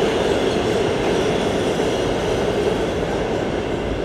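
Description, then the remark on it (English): A subway train roars through a subway station in New York City, a loud, steady rumble of wheels and rail noise filling the space for several seconds without letup, dense across the whole range. “You can hear the subway. At the moment, I'm gonna give it a second because it's kind of loud.”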